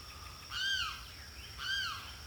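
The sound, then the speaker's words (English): Two loud, wailing squawks from a limpkin, each rising then falling, spaced about a second apart over a steady high-pitched whine in the background. No one speaks. “I think the limpkin was flying around, and I heard that squeaky dryer, and it landed right here.”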